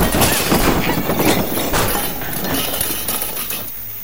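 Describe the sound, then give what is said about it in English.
A person knocked backward by a woman running for the door slams back-first into a pile of junk: a loud, sustained clattering crash of breaking and clinking debris that rattles for several seconds before gradually tapering off. “My back hits a pile of junk. The junk hits back.”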